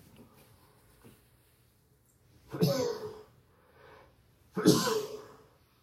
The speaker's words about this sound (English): I have a sneeze coming, pardon me.